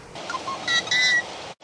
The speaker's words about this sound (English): They'll spend their summers here and raise a brood nest here in the cattails, and then they'll migrate south. These birds are territorial. If you look out in the marsh, you'll see yellow-headed blackbirds on cattails here and there